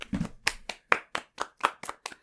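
Hand clapping in a steady rhythm, about ten sharp, bright claps over a couple of seconds, with no talking, like a small round of applause from just a few hands.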